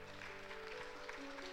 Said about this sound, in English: But I got to tell you, I mean, it's great we clap to it.